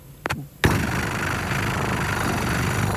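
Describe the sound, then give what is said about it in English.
After a couple of brief clicks, a person makes a steady, rough rumbling purr with their voice, imitating a cat, held evenly for a few seconds. “So, best cat purring impression.”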